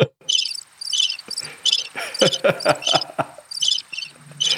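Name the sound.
crickets chirping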